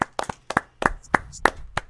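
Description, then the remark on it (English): Brief, sparse applause: roughly ten sharp, bright hand claps in an uneven rhythm, moderately loud, with no voices. “I always say I only beat games for the applause.”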